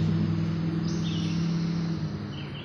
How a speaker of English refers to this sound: Oh, I'm sorry for that car that went by. It was quite loud.